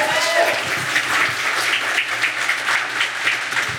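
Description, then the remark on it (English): A crowd at a show in Toronto applauds steadily, many hands clapping in a dense, continuous patter that stays loud throughout, with a few cheers or whoops mixed in near the start. “Give yourselves a round of applause for making it out.”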